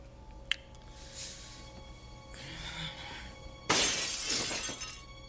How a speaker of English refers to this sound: This time, though, when he throws his foam ball, the window shattered.